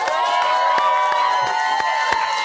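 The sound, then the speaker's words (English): The audience of Watch What Happens Live in the Bravo Clubhouse breaks into sustained applause mixed with cheering and whoops as guests Craig Conover and Austen Kroll are welcomed, a dense wash of clapping with sharp individual claps and high excited voices rising above it. “Austen, you clapping for yourself?”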